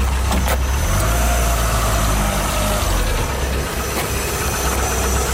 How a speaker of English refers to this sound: This is one of the local cars you can hear driving past.